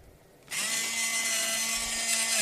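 An electric pencil sharpener sharpening pencils whirs to life after a brief quiet moment, a loud, steady grinding buzz with a low motor hum that holds constant for about two seconds.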